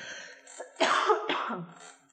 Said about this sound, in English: Just because I'm having like a coughing fit out of nowhere.